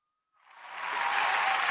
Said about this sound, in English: Give this man some applause. Some fake-ass applause from the soundboard.